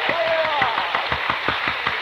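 A crowd applauds, with dense, steady clapping and a few sharper individual claps standing out in a fairly loud, continuous burst; a faint whistle-like tone rises briefly early on.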